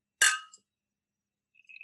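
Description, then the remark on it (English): Glasses clink once in a toast, a bright chime that rings out briefly, followed a moment later by a faint, high, lingering ring. “I want to raise a glass to you, sir.”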